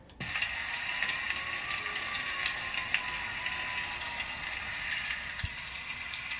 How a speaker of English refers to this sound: you can just hear that continuous rain all the way through this